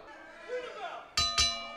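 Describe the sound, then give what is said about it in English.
Two sharp metallic clangs of a wrestling ring bell, rung at the referee's signal, struck in quick succession, each leaving a bright ringing tail, following a stretch of faint background murmur. “Oh, the referee indicated to ring the bell.”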